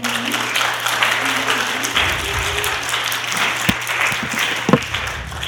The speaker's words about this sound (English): You may applaud it.